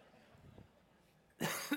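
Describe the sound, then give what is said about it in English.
During a church sermon, a single loud cough from the preacher bursts out near the end after a quiet stretch with faint background noise, followed by a brief second catch in the throat. “Try not to cough in the mic.”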